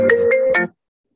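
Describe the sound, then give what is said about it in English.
A short electronic phone ringtone plays a quick melodic burst of tones, loud, then cuts off abruptly into silence. “We were literally talking before we started recording about phones ringing during the podcast, and literally it had to happen.”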